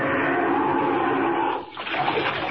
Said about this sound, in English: Down, down, right into the water.